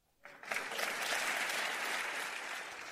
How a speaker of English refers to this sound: That applause coming from other members of the Florida House.